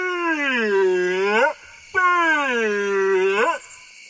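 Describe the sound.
A person's voice imitates a deep, guttural, drawn-out howl twice, each long wavering call rising and falling before cutting off, loud with a short pause between them.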